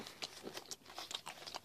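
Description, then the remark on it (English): A label being ripped off a package of nuts: a quick run of crinkly, papery tearing and crackling bursts, bright and scratchy, fairly quiet, with no voices. “Rip this label off. They ain't paying me. Rip this goddamn label off.”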